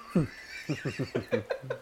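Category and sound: animal, horse neighing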